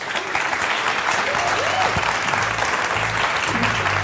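An audience applauds three men in a steady, dense wash of clapping that holds at an even loudness for about four seconds, with faint low murmurs and a brief voice-like tone underneath.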